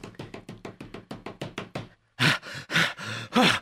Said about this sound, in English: Uh-oh. What's that? I hear footsteps.